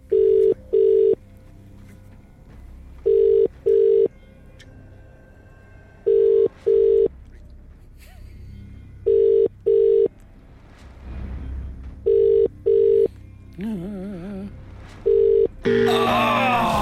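A telephone call to a randomly selected person: a ringback tone repeats in steady double pulses, about six rings in a row with no answer, over faint background murmur, ending with a brief burst of noise.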